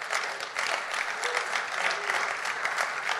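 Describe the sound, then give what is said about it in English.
An audience claps steadily for a few seconds, a dense, even patter of many hands at moderate volume with no voices over it. “I reckon that's worth a clap.”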